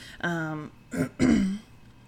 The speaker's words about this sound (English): I have allergies because in Texas the pollen never rests, so I'm sorry if I clear my throat a shit ton.